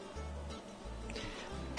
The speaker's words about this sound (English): Sorry, I was fighting a cough there. I just knew that if I didn't take half a second and cough off microphone, it would have ended up right in the microphone, and that's no fun for anyone.